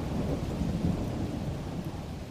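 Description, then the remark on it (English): A steady, dense wash of heavy rain with a deep, continuous rumble of thunder rolling underneath, loud, with no voices present; a storm on the raging sea in the biblical story of Jonah. “The storm calmed and the ocean waters grew still.”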